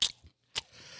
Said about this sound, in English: I don't know about y'all, but don't y'all hate people that chew their fucking mouths open like this? Oh, God.